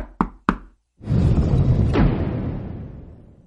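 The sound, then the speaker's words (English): Two sharp knocks on a castle door in quick succession by a young man seeking shelter, then a brief pause before a loud, broad rushing rumble swells in and slowly fades away. No one speaks. “Ah, he is at the door.”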